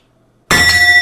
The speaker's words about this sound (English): One last bang on the gong? Sure.